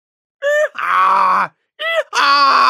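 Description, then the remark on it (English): A little gray donkey standing in front of a mill brays loudly in two rasping hee-haw cycles, each a short, higher-pitched squeal followed by a longer, harsh, lower groan, with a brief pause between them and no talking. “A little gray donkey was standing in front of the mill, crying out anxiously.”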